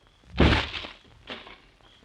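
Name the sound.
door being kicked open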